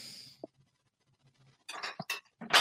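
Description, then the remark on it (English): A plating plate is picked up from a stack in a kitchen, with a quick knock followed by several bright ceramic clinks and rattles in short bursts toward the end, with no voices. “He's grabbing a plating plate.”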